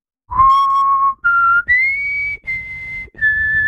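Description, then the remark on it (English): Someone whistles a short musical theme melody, five clear sustained notes stepping upward with brief breaks between them, loud and pure with no talking. “How else do you want me to represent music? No, you're whistling, right.”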